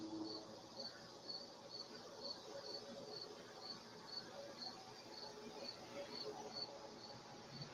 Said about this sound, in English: Crickets, literally. Literally.